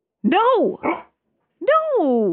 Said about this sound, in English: Rascal. No barking.